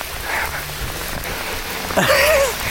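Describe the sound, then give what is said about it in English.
Heavy rain pelts down in a steady, dense hiss while someone runs in it, with a brief higher whistling sound rising over it near the end. “And bloody hell, it's really pelting it down with rain.”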